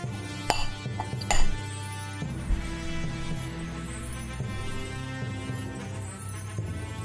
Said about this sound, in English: Can I see what's making the tinking sound? The metal arms that you hold in front of you.